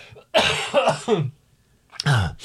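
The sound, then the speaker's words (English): A loud burst of harsh coughing and throat clearing, three rough hacks in quick succession, a short pause, then one more raspy cough. “Don't start me laughing because I have a coughing fit.”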